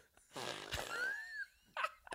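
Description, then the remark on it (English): A fart machine lets out a long, buzzy, rasping blast that ends in a squeaky whistling tail, followed by a short second burst; fairly loud, with no talking. “Blake's moved his microphone unknowing to us. It's right above the fart machine.”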